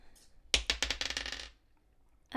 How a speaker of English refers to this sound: Go ahead and roll damage. Right, where is the dice that I need? Okay, yeah.